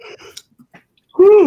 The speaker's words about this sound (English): I made … yawn.